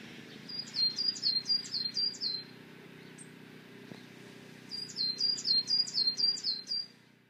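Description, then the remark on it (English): Two bursts of rapid, repeated high-pitched bird chirps, each a quick series of about six notes, separated by a quiet pause, outside an ossuary church surrounded by a graveyard and trees, over a faint low ambient hum with no talking. “The only discernible noise is the soft chirping of birds.”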